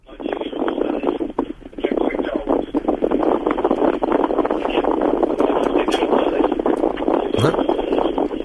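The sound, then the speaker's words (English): Loud, steady wind roars and buffets into a phone microphone, a continuous rushing rumble heard through a narrow telephone line for the whole stretch. “It's a little bit windy.”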